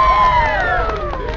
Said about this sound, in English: Again, everyone cheered.